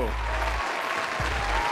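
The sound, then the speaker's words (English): A crowd applauds, a dense, steady wash of many hands clapping that holds evenly for the full two seconds, with a low rumbling hum underneath. “Yeah, so much applause from my crowd, you know.”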